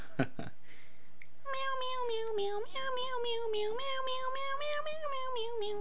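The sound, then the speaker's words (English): Cats meow in a sung, melodic pattern for a Meow Mix cat food commercial jingle, their voices bent into a steady jingle tune that runs continuously after a couple of short opening clicks, fairly loud. “They don't have those commercials anymore. Meow Mix? That was another one of my favorite songs.”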